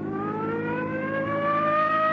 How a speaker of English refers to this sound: Those interstate truckers will give you a clear road after them. They're the best drivers in the country. Come on, hit your siren.